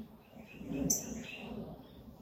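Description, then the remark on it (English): Faint birds chirping, a few thin high tweets rising over a soft, low background rumble, with one brief sharper chirp near the middle. “Thank you for the beautiful birds.”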